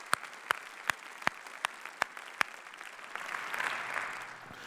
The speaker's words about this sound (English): Maybe we can give God a hand clap and praise for that. Amen?